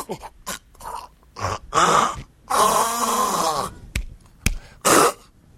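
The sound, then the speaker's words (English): A voice imitates a cat hacking up a hairball: a run of harsh, wet gagging coughs and retching groans, fairly loud, in uneven bursts with a long strained heave in the middle. “You cough up a fur ball.”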